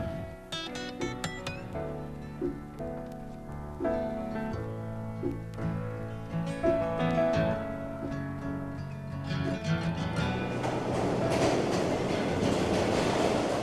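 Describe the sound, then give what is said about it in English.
A New York City subway train heading north past Central Park rides along the rails, starting with whining metallic tones over a steady rumble, then swelling into a louder, rushing roar near the end. No one speaks. “Say, take a subway north, past Central Park, past the Uppies, past Woody Allen's Upper East Side, past 110th Street and into Harlem.”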